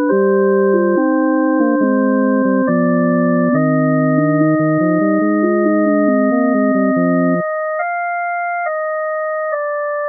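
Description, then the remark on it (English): A Bach fugue passage with the theme at double speed, its entries separated by only one beat, played in pure electronic sine tones. Several voices move in steady stepwise notes, then the lower parts drop out, leaving sustained high tones. “Here's the explosion separated at one beat.”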